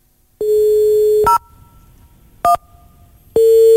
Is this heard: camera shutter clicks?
no